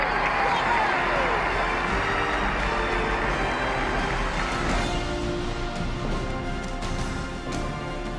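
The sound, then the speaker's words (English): A huge crowd of thousands, gathered to share a historic day with the King and Queen, roars and cheers in a steady, dense wash of voices, loud and unbroken for the whole stretch, with no single voice standing out. “Thousands upon thousands of people gathered to share this historic day with the King and Queen. Listen to the crowd.”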